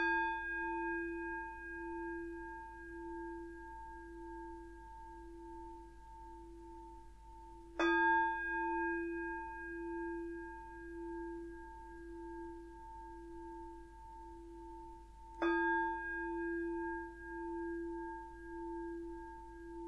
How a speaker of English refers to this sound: So if you want to take a moment to make yourself comfortable, I'll start with three sounds of the bell.